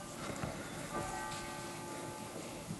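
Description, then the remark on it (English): A monastery church bell rings for Lauds on a dark, gray Sunday morning, its sustained metallic tones hanging over a steady wash of outdoor ambience, fairly quiet and unbroken throughout. “The bell's ringing down in the monastery for Lauds.”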